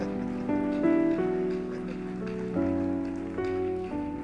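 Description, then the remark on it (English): A church audience rises and claps continuously to welcome their pastor at a morning service at Christmastime, a dense, steady patter blended with sustained keyboard chords that change pitch every second or so. No one speaks over it. “Please let's rise up and with a clap receive our pastor to be a blessing once again to us.”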